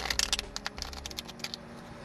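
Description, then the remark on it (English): A deck of cards being shuffled three times for a card reading, a quick run of crisp papery clicks and flutters in uneven bursts, fairly quiet, with no talking. “Shuffle this 3 times and pull 3 cards from the top.”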